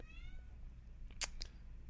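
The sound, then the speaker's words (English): A cat lets out a single drawn-out meow that slides downward in pitch, followed by a couple of brief sharp rustling bursts over a low background rumble, with no talking. “Oh my God, my cat.”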